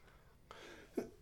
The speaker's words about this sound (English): Man, my throat. I keep telling people I've gunk in my trunk, and I mean that I'm coughing up the phlegm.